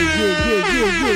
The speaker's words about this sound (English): Those air horns signify a couple of things. The trade deadline has officially passed. It's passed. And the Sacramento Kings get a victory.